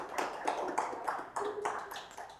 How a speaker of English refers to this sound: you didn't get a separate clap. There it is. There it is.